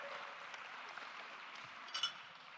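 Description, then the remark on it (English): An audience applauds for the visual effects man, a dense, steady patter of many hands clapping that holds fairly even throughout, with a brief brighter swell near the end. No one speaks. “Let's give our visual effects man a round of applause.”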